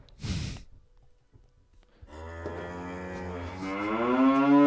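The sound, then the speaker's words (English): A short breathy huff opens, then after a brief pause a long, loud cow moo sound effect rises steadily in pitch and volume, sustained for over two seconds with no talking. “I'm trying to find the cow one.”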